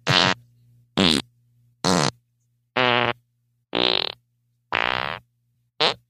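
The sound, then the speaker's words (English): A string of seven loud farts in quick succession, each a short buzzy burst with a shifting pitch, separated by brief pauses and no talking. “Did you hear that? Oh, my God. I must have, like, 6 months' worth of farts built up.”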